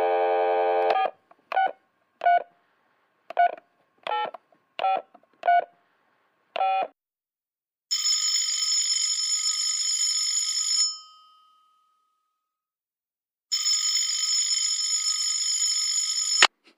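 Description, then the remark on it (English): A brief dial tone gives way to about ten quick keypad beeps as a phone call is placed from California, then a loud telephone ring sounds twice, each a few seconds long with a pause between. No one speaks. “And this is that phone call, word for word.”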